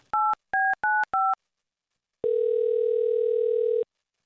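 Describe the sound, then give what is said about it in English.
Four quick two-tone keypad beeps are dialed to place a phone call, then after a short pause a single steady, mid-pitched ringing tone holds for about a second and a half. No one speaks. “Is he ignoring our calls? One more time. Okay, let's try this again.”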